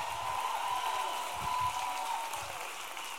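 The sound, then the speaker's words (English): A church audience applauds a young boy who had assisted the preacher, in a steady, dense wash of clapping that holds an even loudness for a few seconds before easing slightly toward the end, with a faint murmur of voices beneath. “Somebody give my little assistant a big round of applause today.”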